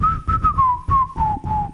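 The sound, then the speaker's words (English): A person whistles a short tune, a clear steady tone broken into several phrases that drift gradually downward in pitch. No one speaks. “I can do a lot of whistles.”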